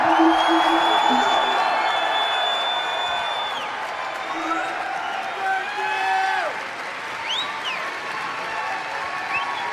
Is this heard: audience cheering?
yes